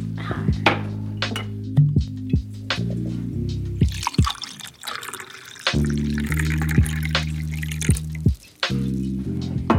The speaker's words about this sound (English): Just pour a little bit of wine.